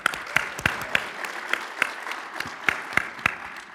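Audience applause: a dense, steady wash of clapping at moderate volume, with sharp individual claps popping out in a rough, regular rhythm for a few seconds, and no talking.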